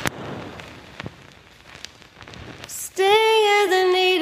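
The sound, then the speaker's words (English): A record needle drops onto a vinyl record at the opening of a song: steady soft hiss and crackle with a few sharp pops, then loud music with a held, tonal note comes in after about three seconds. “Remember how she drops the needle? And you hear the hiss, you hear the pop right here.”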